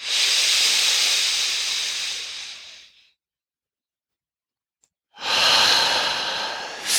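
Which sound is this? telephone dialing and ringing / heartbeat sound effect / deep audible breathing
deep audible breathing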